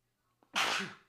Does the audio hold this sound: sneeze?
yes